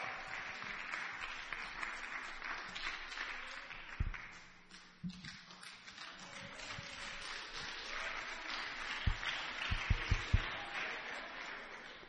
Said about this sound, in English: Let's continue clapping our hands